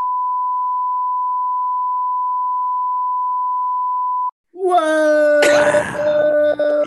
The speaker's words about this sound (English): Yeah, I'm gonna have to get a censor button for this podcast. Start beeping.